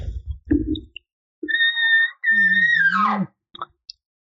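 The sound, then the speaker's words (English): A bull elk calls: a high, clear whistling tone breaks into a wavering, descending squeal over a low grunting undertone, with a few short grunts and chirps around it. No one speaks. “He wants you to come over to him. That's what he just did.”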